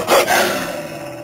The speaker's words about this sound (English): Oh, hey, it's a pack of hungry wolves. I might have known it was a bad idea to venture into the snowy moonlit woodlands beyond Sanityville in the dead of winter.